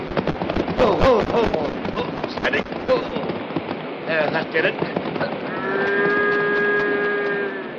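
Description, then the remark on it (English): A nearly drowning calf bawls in a long, drawn-out cry near the end, loud, after several seconds of noisy splashing and commotion with scattered short bleats and shouts, as the calf and a woman are pulled out of the water with a rope by a man on horseback. “Why didn't you let the calf go? Came near drowning you.”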